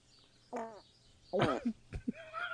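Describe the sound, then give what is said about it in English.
Two short, buzzy fart sound effects, the second louder and more rattling, followed by a few brief bird chirps and whistles in the background, set in a park. “Fart two colon two farts. Yeah, he's in a park.”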